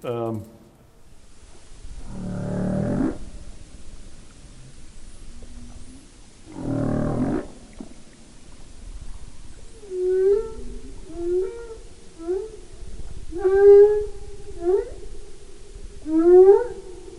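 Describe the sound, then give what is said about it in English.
Humpback whale song: deep, resonant moans and groans alternate with rising, wavering whoops and cries, each call swelling then fading, heard clearly with a soft underwater hiss behind. “Okay, so this is everybody's favorite whale singer.”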